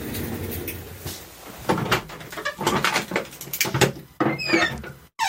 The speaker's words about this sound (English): Wow. That was some quality Foley work. It's an actual door. It's way better than the door sound effect.